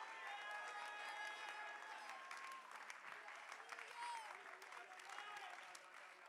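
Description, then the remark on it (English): A church audience claps hands steadily and loudly to praise God for about six seconds, a dense crackling wash of many palms, with some voices calling out beneath it. “Clap your hands and give God praise in this house.”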